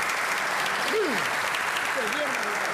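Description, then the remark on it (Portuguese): Steady, dense applause welcoming a guest, filling the whole stretch at an even level, with a couple of voices calling out over the clapping. “Vamos receber aqui com muitas palmas. Bota a palma aí”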